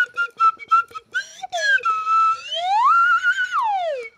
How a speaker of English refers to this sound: And this is my kazoo.